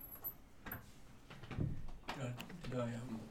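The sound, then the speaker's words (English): A door is opened with a few short clunks and a sliding rattle, muffled voices murmuring underneath and a faint background rumble of wind and cars going past. “opened the door again”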